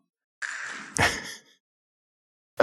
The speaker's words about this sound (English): Maybe you can hear that. Drinking the tea out of my straw. There we go.